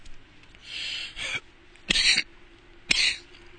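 A run of harsh, raspy coughs, three or four bursts spaced about a second apart, fairly loud against a quiet background with no talking.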